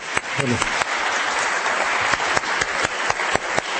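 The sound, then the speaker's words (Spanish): An audience applauds steadily for a few seconds, a dense, even wash of many hands clapping, with sharper individual claps popping out and a brief voice briefly rising within the crowd. “Así que ese aplauso de ahorita.”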